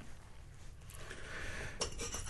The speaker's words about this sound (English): The glass started vibrating there for a second.